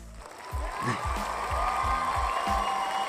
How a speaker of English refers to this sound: So where's the claps for Bosa?